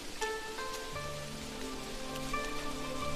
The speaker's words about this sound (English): All you can hear is the rustling sound of bamboo leaves brushed by gentle breezes outside of your window. Now listen carefully to the rustling sound.